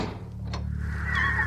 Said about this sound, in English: As the old woman is making her way back to the counter, the creak of the shop door causes her to turn on her heel.